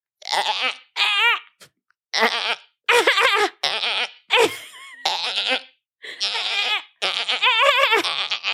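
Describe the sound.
A goat bleats over and over, about nine loud, wavering cries in quick succession with brief gaps between them, with no talking over them.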